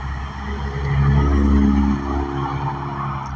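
street traffic

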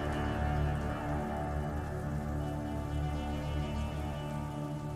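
rain falling at night

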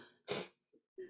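sneeze

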